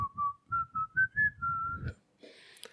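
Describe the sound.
A person whistles the Peach Fuzz theme, a short, bright melody, the pitch stepping up in a series of notes over a quiet, rhythmic thumping backdrop, then it cuts off into a faint hiss and a few soft clicks.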